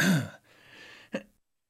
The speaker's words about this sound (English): Try not to cough. Okay, let's see. The next one. As I keep coughing, I'm sorry.